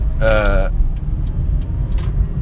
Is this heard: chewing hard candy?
no